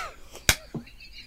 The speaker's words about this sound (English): He did it again. What's with these double high fives?